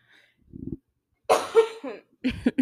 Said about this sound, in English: I'm coughing a lot.